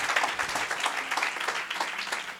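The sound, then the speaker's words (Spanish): A crowd breaks into sustained applause, many hands clapping in a dense, steady wash, with no pause in the noise for the whole stretch. “Vamos, y dale el aplauso al grito, no haga guaje, dáselo de verdad. Clap, clap for real.”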